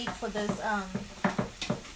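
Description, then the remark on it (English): A spoon stirs a mixture of water, enchilada sauce and tomato paste in a pot, making a series of short scraping clinks in an uneven rhythm, with a faint murmuring voice early on. “We're going to mix the water, the enchilada sauce, and the tomato paste can, and we're going to mix it together.”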